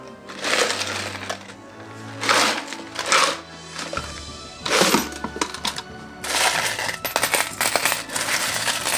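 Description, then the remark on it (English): Coins and money rattle and clatter inside a treasure box being shaken during a pirate dress-up game, in several noisy bursts, with short pauses between shakes and a busier jangling stretch toward the end. “What is in there? Gold, coins, banknotes, money.”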